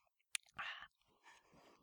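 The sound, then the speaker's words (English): A faint click, then a short airy slurp as someone sips hot tea with lemon, followed by a softer swallow and breath. Quiet, with no talking. “Excuse me while I take a sip.”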